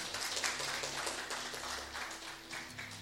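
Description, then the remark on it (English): A group of people claps hands steadily for a few seconds, applauding a person who has been called up, a dense, fairly loud patter of many overlapping claps with no voices over it. “Can we clap hands for”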